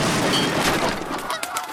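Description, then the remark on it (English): Loud, raucous honking of large geese, several birds calling over one another in a dense, chaotic burst with harsh, nasal cries. “Look at the size of those geese.”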